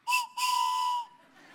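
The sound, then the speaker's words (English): A train whistle sounds two loud blasts, a short toot and then a longer held one, steady in pitch with a breathy, hissing edge, before fading out. No one speaks. “I want to invite you to hop on board the bullet train to Bethlehem.”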